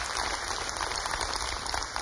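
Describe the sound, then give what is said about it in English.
An audience claps for a sermon in a dense, steady wash of applause, many hands blending into a continuous crackle that holds an even loudness throughout, with no voices heard over it. “Don't just clap for this sermon.”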